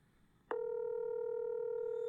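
A click, then a steady electronic telephone ringing tone on an outgoing call, loud and continuous through the end, with no one picking up and no voices.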